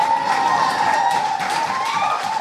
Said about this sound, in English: Yeah. Keep that applause going for our next poet. We've only got a couple left in this round.